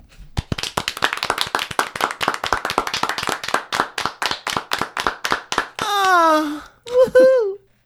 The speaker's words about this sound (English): Let's all clap.